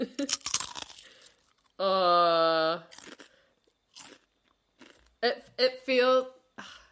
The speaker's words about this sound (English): I'm thinking it's proper crisps. Okay, great, great. Okay, going for the crunch.